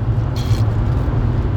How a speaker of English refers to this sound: So, listeners, we're in a car. The sound's bad, sorry.